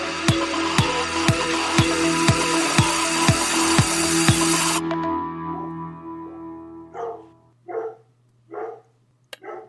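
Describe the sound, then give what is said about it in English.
A dog named Bentley barks a few times in separate sharp bursts after a dense rhythmic stretch of busy sound fades out. No one speaks. “Thank you, Bentley. Bentley has a lot to say about the Jacksonville wide receiver group.”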